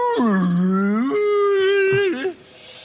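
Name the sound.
voice imitating whale call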